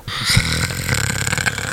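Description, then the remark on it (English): A person imitates snoring with a single drawn-out, loud, rattling snore, a rough throaty rumble lasting under two seconds, with no talking. “That's what you sound like when you sleep. Yeah. Yeah. Daddy snores.”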